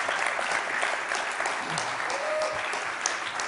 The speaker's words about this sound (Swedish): Så det där är absolut, det är värd en applåd.